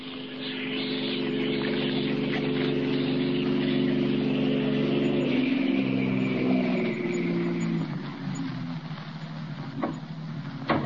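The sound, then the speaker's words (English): A car engine drones steadily and loudly as a car comes up the street, its pitch sliding lower midway as it rolls past, then easing off a little toward the end. No one speaks. “a car coming up the street.”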